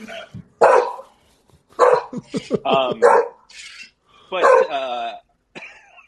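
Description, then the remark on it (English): A dog barks several times in short, loud, irregular bursts, some with a drawn-out whining tone, with brief pauses in between. “I think you got Tom's dog, by the way.”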